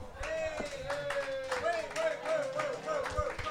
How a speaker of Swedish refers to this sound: Och grejen är att då kommer ni ställas emot veteran-panelen. En stor applåd.